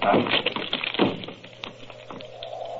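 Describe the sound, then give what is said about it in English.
A locked door to Dr. Roylott's room is broken in with two heavy crashing impacts a second apart, followed by rattling and splintering clatter that fades away. “Holmes, the door's locked. Break it in.”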